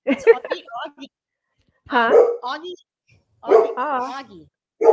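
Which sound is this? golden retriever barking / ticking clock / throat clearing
golden retriever barking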